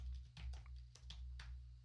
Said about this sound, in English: You can hear me typing, can't you? Da da da da da.